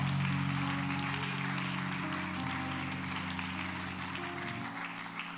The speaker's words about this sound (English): Come on, clap your hands unto the Lord one more time.